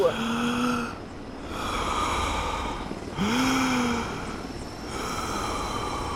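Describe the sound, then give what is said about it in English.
Slow, deep breaths taken to stay calm repeat in a steady rhythm, each long inhale and exhale rasping, with a faint voiced hum riding on some of them. “It's very hard to stay calm. Keep breathing, ….”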